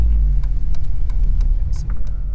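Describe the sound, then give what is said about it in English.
A car engine hums low and steady from inside a vehicle driving around West London, a continuous road rumble with a few faint clicks and taps over it and no one talking. “He stops the car and shows us the flats he used to live in with Marie”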